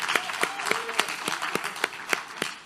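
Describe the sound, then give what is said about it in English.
An audience at a church claps in a steady, even rhythm, about three to four sharp beats per second, cheering for two of the church's youth, over a constant wash of crowd noise with a brief faint voice rising through it. “I want you to cheer for these guys.”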